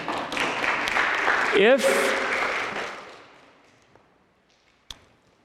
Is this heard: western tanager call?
no